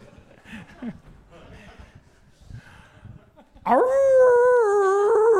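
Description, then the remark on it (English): Muffled talking gives way to a loud, sustained wolf-like howl from a film scene, starting abruptly and holding a wavering pitch for nearly two seconds, dominating the end. “Oh, a wolf man. Wolf man.”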